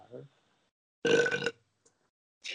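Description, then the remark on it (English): A loud, drawn-out belch lasting about half a second, followed by a short gap and the start of another burp, with a faint murmur just before. “One beer. It's four burps.”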